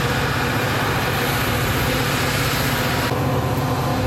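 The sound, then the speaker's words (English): A train rumbles past, a loud, steady wash of roaring noise with a deep low hum that holds throughout; higher hiss thins out slightly toward the end. No one speaks. “Now, I'm very lucky to let this train go by.”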